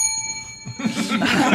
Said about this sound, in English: You may not stop me from ringing that bell when the answer is correct.